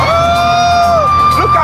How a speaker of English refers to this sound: They are excited. This is the first time those children are receiving the shoeboxes. They are so happy. You can hear the laughter, you can hear the cheer, that excitement, it goes and goes and goes. Right now we're in Ukraine